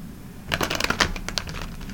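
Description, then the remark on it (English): A deck of cards is shuffled, a quick burst of crisp, rapid riffling clicks lasting about a second before tapering off into quieter flicks. No one speaks. “And we going to do the next flip. We shuffle the shuffle the shuffle the shuffle the shuffle the shuffle the shuffle.”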